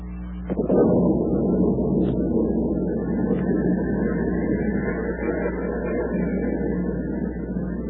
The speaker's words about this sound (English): Snarling silver flecks of lightning flash across the black sky. The brooding wind whips at the heavy rain. The water churns itself into waves of white-capped anger. The elements rage.